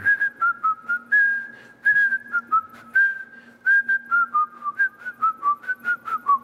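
Someone whistles a simple melody up close, clear and steady, moving through a run of held notes and then quicker short ones, with a faint low hum underneath and no talking.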